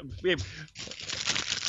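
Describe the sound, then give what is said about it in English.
Steady rustling and crinkling of paper notes being shuffled for over a second, following a brief vocal sound at the start. “You're shuffling through your notes.”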